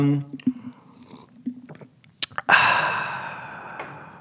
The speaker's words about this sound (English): Everybody loves a good drink and exhale on a podcast. People are like walking on the treadmill right now, just like so grossed out. Yeah, that's a disgusting sound that close into a mic.